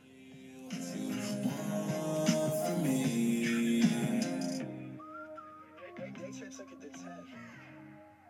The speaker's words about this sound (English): I like the whistle.